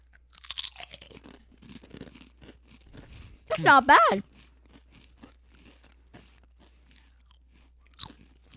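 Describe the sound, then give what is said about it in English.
Crisp crunching of a honey mustard snack being chewed, a series of short, irregular crackly bites that continue after a voice speaks briefly and keep going in the quieter stretch. “Then now you eat it.”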